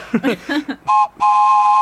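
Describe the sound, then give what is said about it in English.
A wooden toy train whistle by Nido Classics, unwrapped as a Christmas gift, gives two breathy, chord-like toots, a short one then a longer sustained blast, loud, just after a brief burst of voice. “It's like a wooden whistle.”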